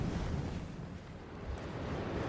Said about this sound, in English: We're standing just at the cliff edge, looking down onto the swelling sea, this magnificent foam of white against the rocks.